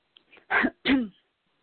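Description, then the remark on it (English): Two quick, harsh coughs in close succession, loud, preceded by a faint intake of breath and a soft throaty sound, as someone is about to speak, with no talking around them. “I was about to speak and I started to cough.”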